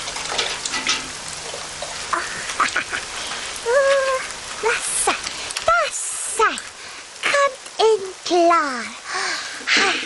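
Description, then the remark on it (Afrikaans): Steady rain patters down in a continuous hiss, while a voice speaks or vocalizes in short, rising and falling bursts over it. “Hoi, wanneer dit so lekker reën, beteken dit ongelukkig dat die vloer een gouer vuil word.”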